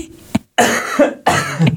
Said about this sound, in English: You will get there if you could just stop coughing. Is it a dry cough? It's a dry cough. Don't let it take you down.